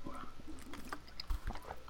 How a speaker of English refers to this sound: Sorry for that silence. I had to take a drink. I have water. Settle down, people. It's water.